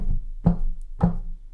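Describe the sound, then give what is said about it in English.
Two dull knocks on a table, knocked as a rhythm for reading a rhyme, about half a second apart, each a short thud with a low, woody body, set over a faint steady hum with no talking. “I can't read it and knock a table.”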